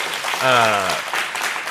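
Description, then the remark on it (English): A burst of audience applause for Star Wars: Visions, a dense crackle of many hands clapping throughout, with a short voiced cheer rising over it near the start. “Just fantastic storytelling and a really unique, clap it up for Visions.”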